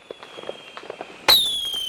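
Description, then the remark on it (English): Fireworks: scattered small crackles and pops, then a sudden loud burst that leaves a bright, slowly falling whistle ringing out. No voices. “Yep, it's fireworks on your radio.”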